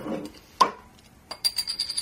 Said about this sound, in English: Well, I have brought along a bottle of beer that I've smuggled into the chemistry department, so shall we crack that open and get on with it?